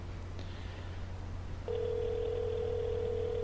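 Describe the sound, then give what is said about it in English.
Telephone dialing and ringing out: a couple of faint blips over a low steady hum, then a loud, steady mid-pitched phone tone that switches on and holds unbroken to the end. No talking. “I was going to call Adam from …”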